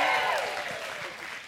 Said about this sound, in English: Clap your hands, all you people. Shout unto God with a voice of triumph. Shout.